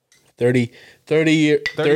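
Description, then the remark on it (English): Glass containers of pineapple cider clink together in a toast, a couple of bright knocks mixed in with voiced, tonal sounds from people. “Well, cheers to the episode.”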